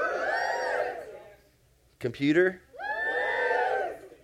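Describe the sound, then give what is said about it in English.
An audience in a room erupts in loud cheering and shouting in answer to questions about owning gadgets such as MP3 players, video games and cell phones, fades to near quiet, then swells again after a single speaking voice asks a brief question. “Well, you don't have to scream anymore.”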